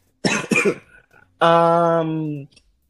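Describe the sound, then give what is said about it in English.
Two quick, rasping throat-clearing bursts, followed by a loud sustained voiced hum lasting about a second, then silence. “Clear your throat.”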